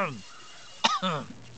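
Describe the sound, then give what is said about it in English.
A single short, sharp, fairly loud cough from someone in the kitchen bursts out mid-clip, with bits of voiced talk just before and after it. “Is everything all right in the kitchen there? I heard some coughing from what was said before.”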